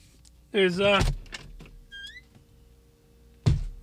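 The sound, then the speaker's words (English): A door at home is opened, swinging with a loud, wavering creak lasting about half a second, followed by faint small clicks and a sharper knock or latch sound near the end. “I heard a sound. It freaked me out. I had to open the door.”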